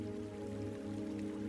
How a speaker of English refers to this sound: If you listen closely, you can hear the gurgling and splashing of water, the call and response of bird trills, and the hum of the breeze against the glass window panes.